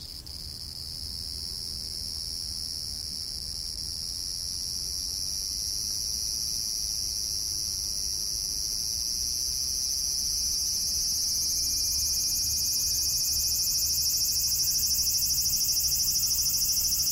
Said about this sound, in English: What I discovered was this. These are some sort of mutant cicadas. I haven't the slightest idea what kind of bugs they are, or why they sound like the love child of a rave DJ and a bandsaw.